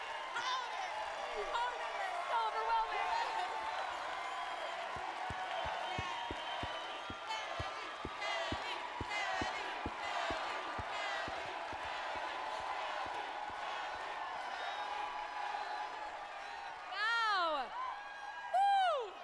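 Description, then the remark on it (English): A crowd roars and cheers for Star Wars actress Kelly Marie Tran in a dense, sustained wash of voices, with sharp claps and thumps scattered through it and a few shrill rising shouts near the end. “Big love from the crowd.”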